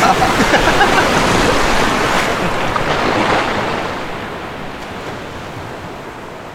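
water splashing

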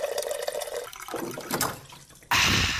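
water cooler dispensing water

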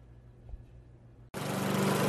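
lawn mower engine running

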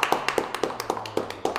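round of applause

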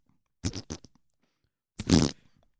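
fart

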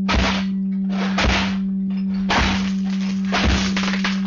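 door being broken down

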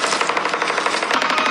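gunfire

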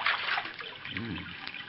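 creek water trickling

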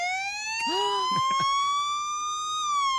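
police siren

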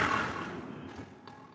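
strong wind blowing

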